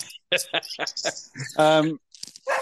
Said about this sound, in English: does your dog want to be on the pod, mate?